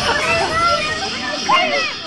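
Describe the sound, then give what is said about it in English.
A crowd of children's voices shouting and shrieking together in steady, overlapping play, with one higher cry rising above the din near the end. “you will stop those children screaming this very moment.”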